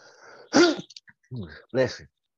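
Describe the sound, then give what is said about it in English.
A single sharp sneeze bursts out, followed moments later by a couple of short spoken words from another voice. “Bless you.”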